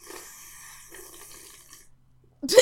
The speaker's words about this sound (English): This is the most disgusting ASMR sound. the sipping sound. I hate it.